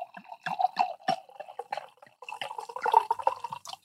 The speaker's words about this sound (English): As in fact, let me go ahead and pour my glass. Let's see how this sounds.